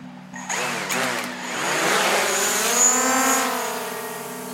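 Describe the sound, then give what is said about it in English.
A drone takes off to be launched out over the Gulf: its rotors spin up into a loud, buzzing whine that climbs in pitch over a couple of seconds, then settles into a steady, high hum. No one speaks. “We launch the drone out over the Gulf and then double back toward the port, making sure to keep a legal flight path.”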